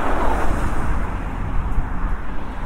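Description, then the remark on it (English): Strong wind buffets steadily outdoors among houses sloping down towards a river, a loud, continuous low rumble with gusty surges and a broad hiss on top, with no talking over it. “Sorry, it's very windy now.”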